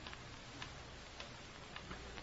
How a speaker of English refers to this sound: Listen to that ticking. That's fate counting what may be the last minute of our lives. As long as you can hear the ticking, you don't have to worry.